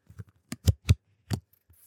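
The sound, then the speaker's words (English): Four question cards being shuffled close to the microphone: a few sharp, crisp slaps and riffles in an uneven rhythm, loud and near, with no one speaking. “Okay, we shuffled them.”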